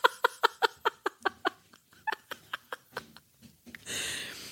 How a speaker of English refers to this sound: It's the dog and the cat playing outside.